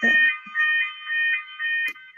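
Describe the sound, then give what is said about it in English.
A fire alarm blares with a loud, shrill electronic tone, pulsing in repeated bursts that swell and dip for about two seconds, with a brief click near the end. “It's our fire alarm goes on.”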